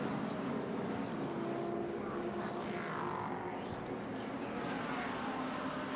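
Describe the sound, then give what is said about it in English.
A number 10 sports prototype race car running in third place roars past, its engine pitch sweeping down as it goes by, over a steady loud wash of track and crowd noise. “the number 10 third place car of Louis Delatraz goes through”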